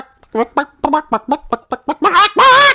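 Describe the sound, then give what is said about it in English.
A voice imitates the little plastic chicken of a coin-operated toy egg machine: a quick run of eight short, rhythmic clucks that builds into two louder, drawn-out squawks at the end, fairly loud. “When it was one of those machines where you put a quarter in and then the little plastic chicken goes...”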